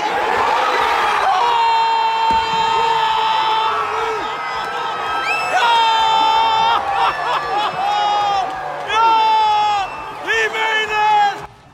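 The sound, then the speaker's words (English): A stadium crowd erupts in loud, sustained cheering and shouting at Iowa State's walk-off win. Several excited voices shriek and whoop over the roar for about twelve seconds. “captured the joy of Iowa State's walk-off win. I can't watch. The crowd will let me know.”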